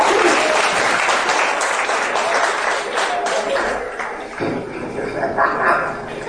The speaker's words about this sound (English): Clap for me, guys, at first.